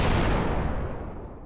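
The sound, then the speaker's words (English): A loud, booming explosion sound effect played from a soundboard, with a heavy low rumble that fades out over a second and a half, its crackling high end dying away first. No one speaks. “I just need a helicopter and an explosion.”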